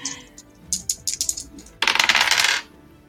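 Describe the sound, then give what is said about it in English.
Dice rolling on a table: several light, sharp clicks tumble unevenly, then a dense, bright clatter bursts for under a second and stops abruptly. No one speaks. “Go ahead and roll bizarre.”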